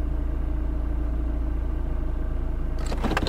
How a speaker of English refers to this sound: Oh, look at the road. It's filled with cars.